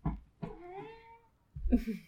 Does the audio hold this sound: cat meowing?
yes